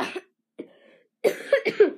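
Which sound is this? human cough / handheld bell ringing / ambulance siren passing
human cough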